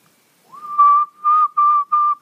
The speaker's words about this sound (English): So you say you can't whistle, but let me hear you try to whistle.